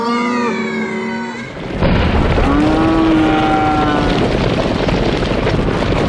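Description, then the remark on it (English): A long cattle moo is followed by a dense, roaring rumble of a stampeding herd, with more lowing drawn out over the steady, loud, wind-like thunder of hooves. “And she's holding a gun over her head. Like she's gonna shoot it off and stampede the cattle.”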